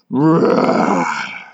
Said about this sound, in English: And yet, real or not, they had heard a distinctly dragonish roar. It filled the whole tower and shook the royal children to their bones.